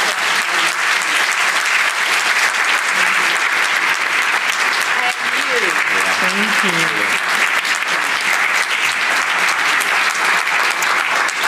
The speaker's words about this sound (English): Can you all give an enormous round of applause?